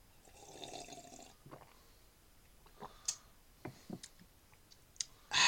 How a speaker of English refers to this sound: I only had the dregs left in a cup, so I had to really work there. That was a really unpleasant noise.